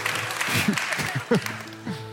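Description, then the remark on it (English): An audience claps in a steady, crackling wash of applause, with voices calling out over it in short bursts. “You're clapping, I'm talking to you.”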